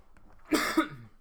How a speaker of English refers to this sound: It's just like phlegm now, you know? It's just the gross... It's like the last part of it. I feel like it's going away. I used to cough like 9,000 times a day, and now it's down to like, I don't know, like 50.